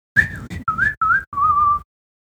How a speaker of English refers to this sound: we do some finger picking, and then we hit that fun little whistling section. Around 2:33. Mm-hmm. And they, yeah, that's fun. It's a fun whistling section they do.